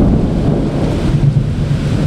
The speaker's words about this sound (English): in South St. Louis, and it is an absolute downpour out here. I actually have to move because I'm starting to get a little wet. Just constant lightning and thunder and cicadas screaming. This is kind of our summertime soundtrack here.